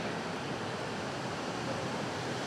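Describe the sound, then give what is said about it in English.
Heavy rain drums steadily on the tin roof of a metal building, a dense, continuous hiss of countless impacts that stays loud and even throughout, with no voices. “Welcome to a tin box. It gets loud in here. So I'm not yelling at you just to get over the sound of the rain.”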